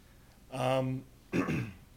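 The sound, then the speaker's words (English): Two short bursts: a voiced throat clearing followed by a rougher, breathy cough, with a brief pause between them and no talking. “Sorry, just a moment. We all got the the coughs.”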